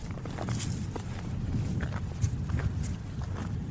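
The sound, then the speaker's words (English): Steady footsteps crunch through thick snow while someone climbs a snow-covered hill in below-freezing, very windy weather: a series of soft, muffled thuds with a faint crisp texture, repeating at an uneven walking pace with no voices. “It's below freezing and really windy, so I'm trying to carefully climb this hill that's covered with thick snow.”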